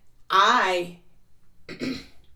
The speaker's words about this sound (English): let me clear my throat for this one.